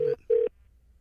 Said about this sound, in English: Are we making a phone call?